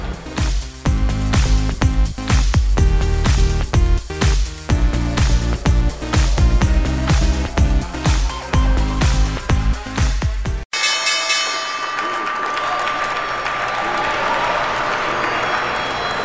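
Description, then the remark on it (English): A loud musical theme plays for about ten seconds, then cuts to the sustained ringing tone of the stock exchange opening bell on Wall Street, rung by online education company Skillsoft, over a steady wash of crowd applause and cheering. “Online education company Skillsoft is ringing the opening bell here on Wall Street.”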